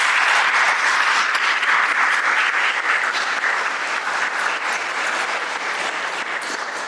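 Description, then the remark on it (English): Steady audience applause for panel guests fills the whole stretch, a dense wash of many hands clapping at an even, loud level that tapers only slightly toward the end. No one speaks over it. “So, I just want to give a round of applause to our lovely guests.”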